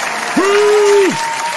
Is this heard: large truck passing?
no